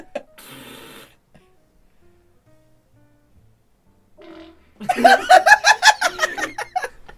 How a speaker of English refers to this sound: What is this video? This woman's just laughing, looking at her friend farting.